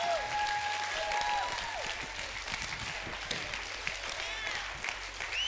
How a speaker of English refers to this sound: Clap your hands and shout like you're going to reap.